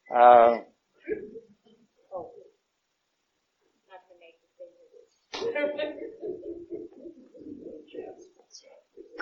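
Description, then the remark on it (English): A pigeon coos in short, soft bursts, with a louder call at the start, while people talk quietly in between and over the later calls. “Would you feed that bird?”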